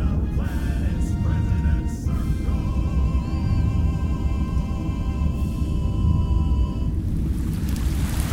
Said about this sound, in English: Maybe it's the ocean. Could be. It's raining into the ocean